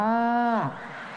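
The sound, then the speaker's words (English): A single drawn-out 'moo' from a human voice imitating a cow in a hardcore Mexican banda song played on a laptop, held steady and then sliding down in pitch as it trails off, fairly loud. “And then a cow.”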